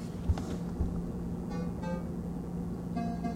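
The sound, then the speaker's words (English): A kitchen refrigerator motor hums with a steady, low, unbroken tone pitched at B-flat. A couple of soft knocks come early on, and faint higher whining overtones flicker in and out over the drone. “That is the tonic of the kitchen, the refrigerator humming.”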